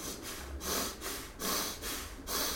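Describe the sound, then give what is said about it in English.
Steady, rhythmic breathing from a person doing seated torso twists, inhaling turning left and exhaling turning right with hands on the shoulders; quick breathy inhales and exhales alternate about every half second in an even pattern, a soft airy hiss on each breath and no talking. “So inhale left, exhale right, hands on the shoulders, elbows nice and wide, and find a nice rhythmic breathing.”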